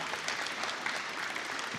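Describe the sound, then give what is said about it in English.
A steady wash of audience applause, many hands clapping densely and evenly throughout at moderate loudness, with no voices standing out. “So one more round of applause, guys.”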